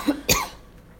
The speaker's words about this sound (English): No, I have got the coughs.